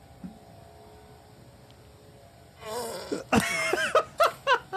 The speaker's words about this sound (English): The dude in the hat behind him. Okay. He lifted his leg and let the fart out. The best part out is that he did it before he even completed his backswing.